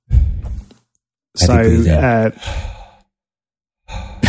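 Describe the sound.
Heavy breathing into a microphone: a short breath, then a long voiced exhale like a loud groaning sigh, a softer breath after it, and another starting at the end.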